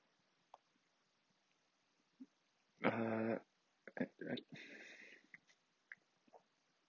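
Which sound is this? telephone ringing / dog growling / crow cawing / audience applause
dog growling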